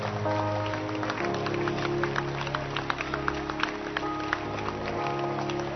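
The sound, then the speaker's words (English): A crowd claps steadily throughout, a dense wash of hand claps mixed with a few sharper individual smacks, while sustained keyboard chords hold underneath and shift partway through. “Can you clap your hands and declare to yourself that where you fail is where you will succeed?”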